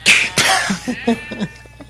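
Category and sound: animal, goats bleating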